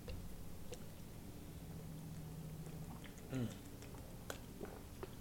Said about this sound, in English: Sorry, drinking water.